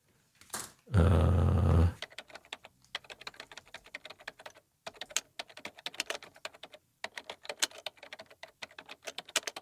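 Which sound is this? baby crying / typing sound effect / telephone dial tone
typing sound effect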